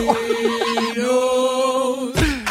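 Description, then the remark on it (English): A chicken clucks in a quick, bouncy series of short notes, then lets out one long, drawn-out squawk before an abrupt burst of noise cuts in at the end; loud. “Where's the chicken? Got to have a chicken.”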